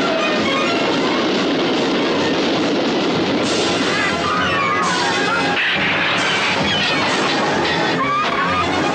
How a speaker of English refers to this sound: Where was this train originally heading? Dresden. It is now the Orient Express.